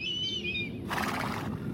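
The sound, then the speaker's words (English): A Mongolian horse whinnies, a high wavering neigh that breaks into a breathy, snorting burst before trailing off, with a low rumble of background noise throughout. “Excuse me, Mrs. Mongolian Horse Guide?”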